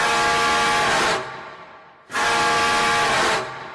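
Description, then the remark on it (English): Two long, loud car horn blasts, each a rich, buzzy tone lasting about a second, separated by a short pause, with no talking. “He has the most annoying honking sound. Here, have a listen.”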